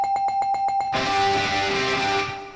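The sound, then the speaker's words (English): A bell rings loudly, starting with a quick run of about seven bright, evenly spaced dings before swelling into a dense, continuous metallic ringing that gradually fades. No voices are heard. “Oh, by the way, I didn't ring the bell.”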